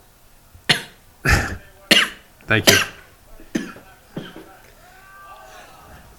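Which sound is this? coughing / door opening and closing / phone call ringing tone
coughing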